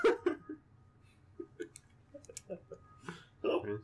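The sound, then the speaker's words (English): A string of short, abrupt hiccups, fairly loud, popping out at uneven intervals with quiet breathy sounds and background murmur between them. “I have the hiccups now.”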